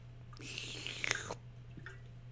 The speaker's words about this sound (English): Hold on, let me take a sip of water.